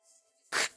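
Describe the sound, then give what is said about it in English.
A voice imitates the quick turn of a door handle as the door is immediately opened: one short, loud, hissing burst after near silence, fading quickly. “So what you heard was like the handle.”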